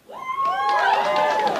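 A small group of waitresses breaks into loud whoops and cheers with scattered clapping, several high voices rising and sliding together in a sustained burst of enthusiasm.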